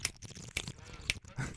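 Someone drinks a glass of water, with three sharp, wet gulping sounds about half a second apart over a soft, low murmur of mouth noise. No one speaks.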